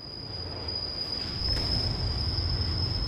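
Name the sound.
passing train on rails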